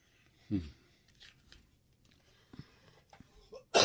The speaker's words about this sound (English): Yes, he still has a cough.